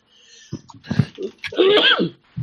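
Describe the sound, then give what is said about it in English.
A few sharp breathy intakes build into one loud sneeze with a voiced, wavering burst at the end, heard on its own without talking. “Bless you.”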